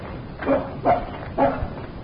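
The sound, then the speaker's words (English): A dog named Cactus barks three times in a steady rhythm, the sharp woofs clear over a faint background hiss. “I'm more interested in what he's barking at than who's pushing.”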